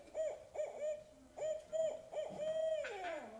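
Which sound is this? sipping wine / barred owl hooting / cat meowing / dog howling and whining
barred owl hooting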